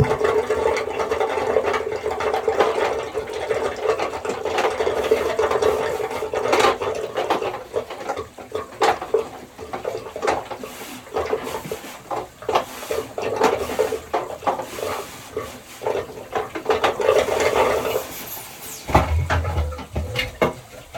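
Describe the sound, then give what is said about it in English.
Clattering, scraping and plastic clunks as the top of a pool sand filter is twisted loose and lifted off, releasing the air and pressure, with a busy run of knocks and a low rumble near the end. “So took the top off, so you can see all the seals and everything on it.”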